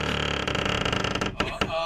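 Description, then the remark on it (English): A long, drawn-out creak of the door of a local tavern in England swinging slowly open, its groaning hinge wavering in pitch and fairly loud, with no voices. “It's the creakiest door in the world to this tavern.”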